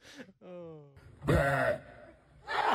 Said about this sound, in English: What? Come on, that's ridiculous. Now, there's, that's your... was that a burp? Yeah, play it again.